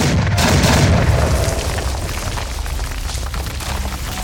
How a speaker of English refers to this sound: Find a spot where you can feel safe that you're not going to have an explosion that comes out of the mouth of the cave. And eventually, the explosion happens.